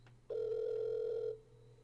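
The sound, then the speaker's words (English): A single steady electronic ring tone over a phone line while calling a McDonald's at 12:38 a.m., lasting about a second and fairly loud, then stopping with no answer, leaving only a low background hum. “What kind of self-respecting McDonald's is not answering their phones at 12:38 a.m.?”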